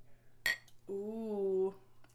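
A single bright clink of beer glasses tapped together in a toast before tasting the beer, sharp with a brief ringing tail, followed by a drawn-out vocal sound from a person over a low background hum.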